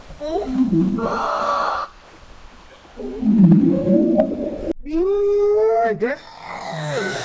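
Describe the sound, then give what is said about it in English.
A person voices a series of long, moaning, swooping whale-like calls, rising and falling in pitch with short pauses between them, fairly loud with no other sound around. “I didn't even realize I could totally understand your whale speak.”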